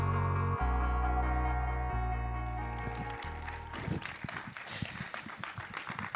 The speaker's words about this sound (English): All right. Thank you very much. Yeah, thank you. You're just applauding the suit.